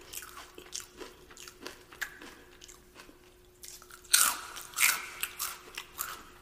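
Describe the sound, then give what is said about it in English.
Crunchy biting and chewing, with repeated crisp crackles and two especially loud bites near the end, no talking. “So crunchy.”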